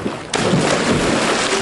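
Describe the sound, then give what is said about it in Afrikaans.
A sudden loud splash as someone dives like a dolphin into cold water, followed by a steady rush of churning, bubbling water that continues without letting up. No one speaks. “Duik een beetje af in die water en soos een dolfijn. Kijk, so!”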